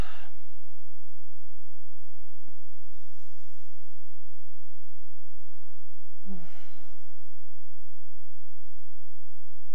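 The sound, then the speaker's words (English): Soft, unhurried breathing of people during a breathing exercise as they go back to normal breathing, with a faint exhale near the start and a clearer breath about two-thirds through, set against a low, steady background hum. “Go back to normal breathing, and just notice.”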